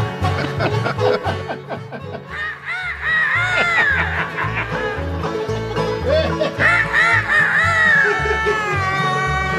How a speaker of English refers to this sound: Is that what a chicken sounds?